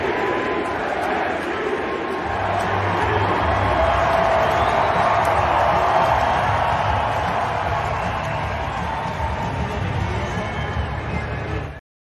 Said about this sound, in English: This is a fantastic moment, and they show Jokic on the Jumbotron. The crowd starts chanting MVP, and his daughter starts clapping along with the MVP chant.